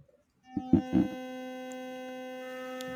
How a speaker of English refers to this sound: Toothbrush. Sounds like a toothbrush, all right. Yes. It's for my teeth and my teeth only. It's the Philips Sonicare Diamond Care. And it's multi-purpose. It not only brushes my teeth, but it also massages my gums.